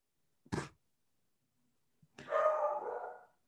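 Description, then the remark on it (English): A dog lets out one short, sharp bark, then after a brief silence gives a drawn-out, wavering howl lasting over a second. Clear, with no one talking. “Oh, this is actually what I'm going to, as you hear him howling in the background.”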